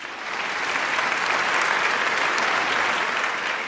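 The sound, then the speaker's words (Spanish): A crowd applauds Anton Chekhov steadily, a dense wash of clapping that swells in over the first half second and holds at an even, fairly loud level to the end, with no voices over it. “Aplaudimos a Chejov y nos disponemos a leer Una noche terrible.”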